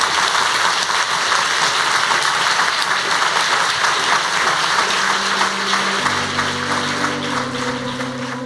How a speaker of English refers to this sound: Well, I want to thank you, Dame Antonia, for talking to us all for this evening. For me, it's been fascinating. I hope it's been good for you. And I think we should applaud Antonia.